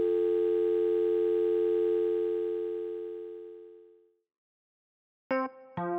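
A steady telephone dial tone hums loudly for about four seconds before fading away. After a brief silence, a short electronic tone burst follows, as if dialing has begun.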